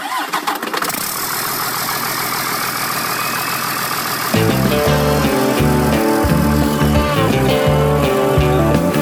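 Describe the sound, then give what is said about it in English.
A big truck engine cranks and settles into a loud, steady rumbling idle; about halfway through, music with a driving beat comes in over the engine noise. “Let's go for a ride in this big old truck.”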